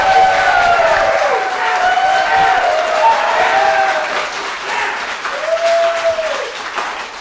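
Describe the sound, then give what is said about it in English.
A crowd claps steadily for several seconds to vote on an applause-o-meter while voices cheer and whoop over the top, with a few high, drawn-out shouts. The applause stays loud throughout and eases only slightly toward the end. “Okay, so let's do some applause-o-meter.”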